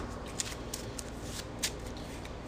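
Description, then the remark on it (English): A deck of cards being shuffled, a continuous papery riffling with quick bursts of flicking and a couple of sharper snaps, steady and fairly quiet with no voices. “I'm going to shuffle this back in.”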